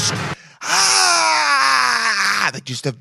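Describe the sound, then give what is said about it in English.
A man lets out a loud, guttural scream lasting about two seconds, its pitch sliding steadily downward, with brief vocal bursts just before and after. He is demonstrating the scream with his own voice. “Just guttural. And it has to go down, because you can't just be like, ah. You have to be like, ah. It has to like hurt.”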